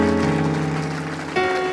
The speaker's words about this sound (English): Let's do it right. Clap your hands like you really, really mean it today.